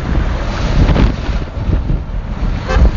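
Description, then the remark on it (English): A heavy 40 mph head crosswind in the desert buffets the microphone in loud, continuous low rumbling gusts, with a roaring rush that surges and eases throughout; no voices are heard. “Me a nice 40 mile an hour head crosswind.”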